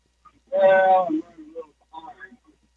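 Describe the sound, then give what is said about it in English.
A caller's voice on a bad phone line, garbled and distorted: a warbling, tinny burst of speech, then broken, choppy fragments that cut in and out. “we have a terrible phone connection.”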